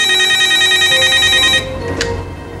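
A telephone rings as Zeebo the clown calls a kid on the phone, a bright, buzzing electronic tone that holds steady for about a second and a half, then cuts off, leaving a faint hum and a brief click. No one speaks.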